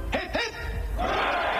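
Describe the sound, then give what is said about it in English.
A crowd at St James's Palace giving three cheers for King Charles III after his proclamation: a couple of short shouted calls, then a loud, sustained roar of many voices shouting "hurrah" together, holding steady to the end. “Three cheers for His Majesty the King.”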